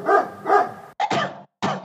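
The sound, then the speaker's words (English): Four or five loud barks in quick succession, with short gaps and a brief pause before the last one, from a rabid dog following someone. The barks may be a person's voice imitating a dog. “Right now, though, I'm more concerned with this strange rabid dog following me.”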